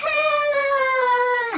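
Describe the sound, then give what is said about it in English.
A voice performs a little alien's scream: one loud, shrill, sustained wail that holds a steady high pitch for over a second, then dips briefly at the end, with no talking. “The monster dangled Caspian by one arm up in the air, and the little alien screamed.”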